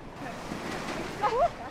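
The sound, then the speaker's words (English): Ocean surf washes and breaks in a steady, rushing roar at a surf beach in Lahinch, Ireland, where people are surfing. A short high-pitched call or shout rises briefly near the end. “That's just some of the people taking to the sea over the weekend, hoping to catch a wave.”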